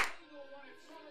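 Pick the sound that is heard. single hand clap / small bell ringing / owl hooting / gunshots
single hand clap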